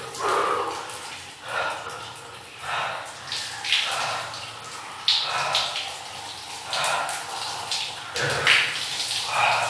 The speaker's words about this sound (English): But what I did right now is just let the water hit my body, and then I'm going to put shampoo on my hair and wash my body. So I'm going to get in the cold water again.